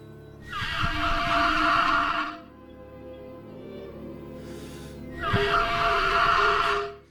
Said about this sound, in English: I give you the resonating chamber of a velociraptor. Listen to this.